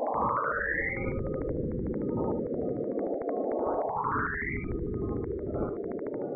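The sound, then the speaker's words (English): Saturn radio waves turned into sound: a dense, eerie hiss with rapid ticking pulses, crossed twice by long rising whistling sweeps, steady and fairly loud throughout with no voices. “And the last Saturn nod is comes in the form of an actual sound from radio waves from the planet Saturn.”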